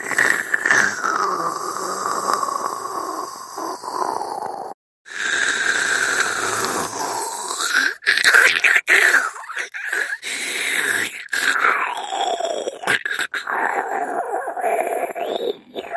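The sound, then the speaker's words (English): A person's voice imitates a disgusting slurping noise: a long, loud, wet, squealing gurgle with wavering pitch, broken by a few brief pauses and sharp catches, and no speech. “We heard a disgusting slurping sound, a bit like this.”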